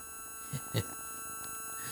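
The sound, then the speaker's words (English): A steady, high-pitched ringing tone hums continuously in the background, fairly faint and unchanging, with two brief low thumps near the start and no one speaking. “do you hear ringing?”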